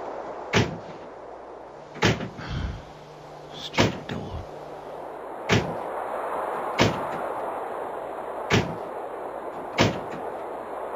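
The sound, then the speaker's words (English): A back door that has come unlatched slams again and again, about seven sharp bangs roughly every second and a half, each with a brief rattle, over a steady windy hiss. No one speaks. “We're watching the door go over and over again. Slam and slam.”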